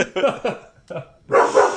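A dog barks in a quick series of sharp barks, pausing briefly before a louder, longer bark at the end.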